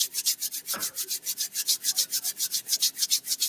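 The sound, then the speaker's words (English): Two palms quickly rubbed together to warm them, a steady rhythmic swishing of about six strokes per second, bright and hissy, with no voices over it. “Listen to the sound of your hands rubbing together.”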